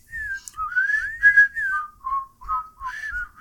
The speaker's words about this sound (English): Because I'm sitting here about to do the whistle, you know, the whole thing. So I wasn't sure that... My mouth is parched right now, but I would love to whistle with you. You want to try it?